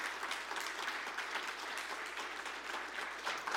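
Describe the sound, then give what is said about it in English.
Steady applause from a church audience welcoming a missionary as she comes up; a dense wash of many hands clapping at an even level for several seconds with no voices standing out. “Would you guys give her a round of applause as she comes on up?”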